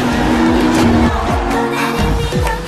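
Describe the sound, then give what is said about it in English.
Loud car engines rev hard together at a race start, their pitch climbing and dropping in repeated surges as the cars launch off the line, with no talking over the roar. “Ready, set up, go!”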